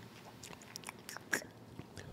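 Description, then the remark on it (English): Someone quietly sips an amber-colored ale, with a few soft wet mouth clicks and a brief louder slurp midway, no talking. “Go ahead, take a sip.”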